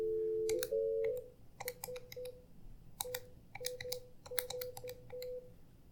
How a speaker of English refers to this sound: Let's see. Who are we calling? It's ringing.